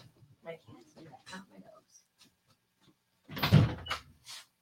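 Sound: pet scratching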